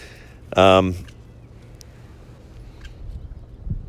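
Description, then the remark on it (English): A single loud bird call rings out, a short harsh squawk lasting about half a second, followed by quiet background rumble and faint low noises. “A weed, oh, it's a bird, okay.”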